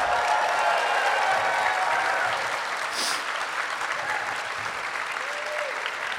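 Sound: audience cheering and applauding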